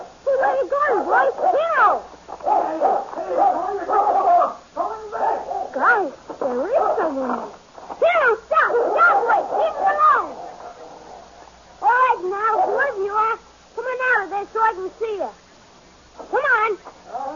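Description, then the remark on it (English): A dog growls and snarls in a string of loud bursts with short pauses between them, the rumbling rising and falling in pitch for the whole stretch. “what's the matter, boy? What are you growling at?”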